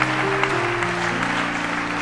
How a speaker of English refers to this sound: Oh, you're clapping.